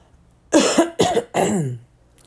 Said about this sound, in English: Excuse me, I don't know where this cough coming from, but I'm trying to get rid of it.